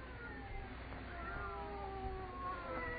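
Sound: cats meowing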